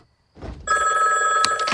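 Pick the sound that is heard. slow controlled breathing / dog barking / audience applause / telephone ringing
telephone ringing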